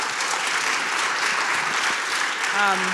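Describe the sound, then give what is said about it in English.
Steady, dense applause from an audience fills the whole stretch, a continuous wash of clapping at even loudness, with a brief voice surfacing near the end. “Let's ask some questions, and if y'all can applaud that, sure.”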